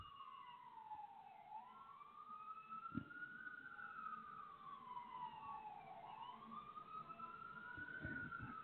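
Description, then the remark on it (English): Emergency vehicle sirens passing by wail continuously, rising and falling in long slow sweeps, heard from the 14th floor of a building, with steady background traffic rumble and a soft thump near the middle. “So off to get sirens going by up here on 14th floor.”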